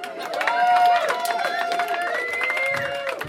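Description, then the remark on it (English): A live audience claps along to a performer's song and cheers, a dense wash of hand claps mixed with whoops and voices, loud and steady for a few seconds. “Few people not clapping, but they're just transphobic.”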